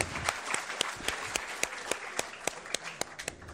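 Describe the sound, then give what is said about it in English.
Steady audience applause from a modest crowd at a campus event as the Department of Gender and Women's Studies is thanked as a sponsor, with dense overlapping claps and a few sharper individual claps standing out, sustained evenly at moderate volume without voices. “The American Culture Center, the Department of Gender and Women's Studies, I accept a clap for that one, absolutely.”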